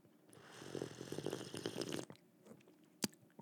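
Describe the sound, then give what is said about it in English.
A noisy slurping sip of a drink lasting under two seconds, with bubbly liquid gurgles, followed by quiet and a sharp click near the end. “The sip and turn in your Bibles.”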